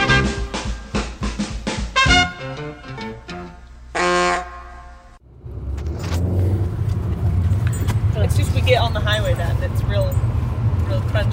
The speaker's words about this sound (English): We're in the car